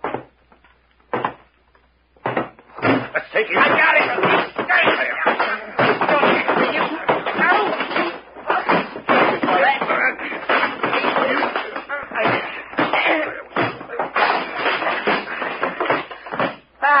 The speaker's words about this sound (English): Gee, that was a fight.